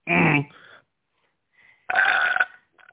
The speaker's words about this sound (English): Oh, God. Damn, I just burped like a motherfucker.